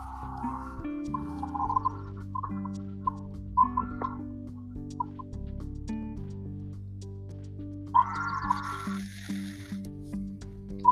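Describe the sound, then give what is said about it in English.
Soft, scattered bird chirps and calls sound in the background over a steady low hum, with a brighter, busier burst of twittering near the end. No one speaks. “I just love the gentle bird noises in the background.”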